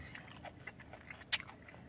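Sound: chewing juicy food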